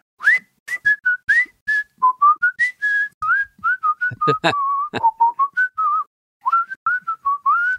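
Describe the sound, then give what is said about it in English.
A person whistles a bouncy, jaunty song tune, trying to play all the parts at once, with quick successive notes and brief pauses, punctuated by a few sharp percussive mouth clicks mimicking drum hits. “…. But it was whistled, right?”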